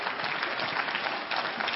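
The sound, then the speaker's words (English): A church audience claps steadily during a sermon, thanking God, many hands producing a dense, even wash of applause that holds at a constant level throughout, with no voices standing out. “Somebody clap your hands and thank God for that.”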